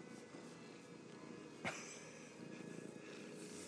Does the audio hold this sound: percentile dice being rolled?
no